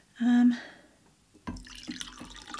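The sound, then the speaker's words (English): White rum pours into a jigger in a steady trickle with a bright splashy texture, starting after a brief low hum and a moment of near silence. “Okay, 1 ounce of rum.”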